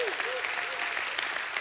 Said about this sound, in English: Somebody say amen and give God a hand clap and a shout of praise.